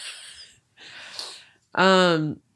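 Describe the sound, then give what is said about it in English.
Two airy, hissing sniffs through a stuffy nose from someone getting over a cold, each about half a second long, followed by a short, loud voiced sound. “What do you have, the sniffles over there?”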